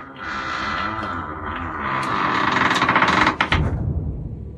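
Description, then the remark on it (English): Massive wooden doors at a doorway in underground tunnels swing open after a doorbell is rung, with a long, loud groaning creak that wavers in pitch, building into a rattling, juddering clatter before settling. “the massive wooden doors began to swing open.”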